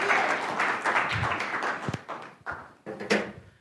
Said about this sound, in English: A round of applause for this person here. Thank you, sir, very much.